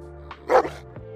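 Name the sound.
dog barking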